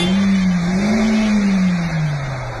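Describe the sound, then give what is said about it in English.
A very small car stuck in snow revs its engine hard and steadily, its pitch swelling and then sagging, while the wheels spin with a broad rushing noise. It is loud, with no voices. “Look, Dan, your wheels are not spinning anywhere.”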